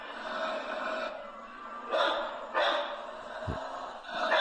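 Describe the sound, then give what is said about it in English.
A female dog holding a rawhide in her mouth growls steadily, the rumble muffled by the full mouth, broken by a few sharp, noisy breaths between stretches of growling. “You hear that growl? She's growling, and she has to take a breath. She's got that thing in her mouth.”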